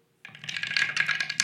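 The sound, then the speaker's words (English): Dice clatter and tumble down a dice tower in a quick, dense burst of hard clicks and rattles, fairly loud, with no talking over them. “It's a very nice dice tower.”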